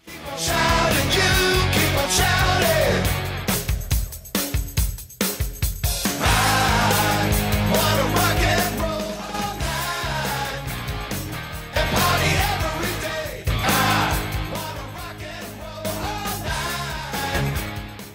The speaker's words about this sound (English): Then comes the backing vocals with "You Keep on Shouting" two times, and then comes the awesome chorus of the song title.